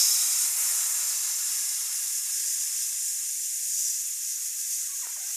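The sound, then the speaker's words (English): A person records themselves making a long, steady hissing sound with their mouth, a breathy high-pitched hiss that holds for about five seconds before trailing off slightly at the end as they run out of breath. “Now we'll do a hiss.”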